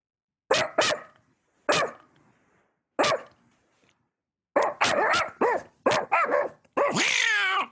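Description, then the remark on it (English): Someone imitates a dog barking at a real dog through a phone speaker: a few loud, spaced barks, then a rapid burst of yaps ending in a longer, strained howling whine, with no other talk. “Oh, there's a dog. Watch.”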